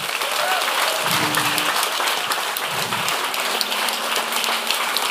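An audience bursts into sustained applause for a person who had just led the group, a dense, steady crackle of many hands clapping at once, with a faint voice or two murmuring underneath.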